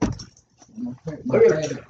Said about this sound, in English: You know, it's breathing on there for you guys, so you can hear the doggies.